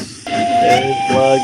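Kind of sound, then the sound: vehicle, steam train whistle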